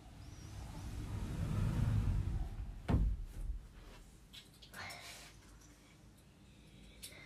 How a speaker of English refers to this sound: Will you close that closet door for me?